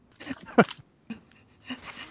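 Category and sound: animal, dog panting and sniffing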